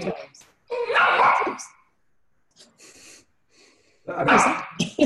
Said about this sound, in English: Sorry, dog is talking.